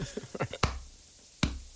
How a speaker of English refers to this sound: This is like half-ass claps